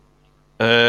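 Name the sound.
sneeze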